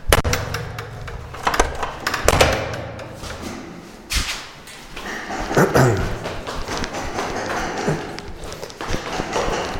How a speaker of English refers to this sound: Sorry, I'm just going to... I have to run downstairs. I'm going to ask my neighbor to stop hammering.